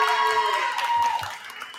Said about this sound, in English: We're going to get you on camera, Coach Meany, because we want to make sure we can see you. Clap it up for Coach Cheryl as well.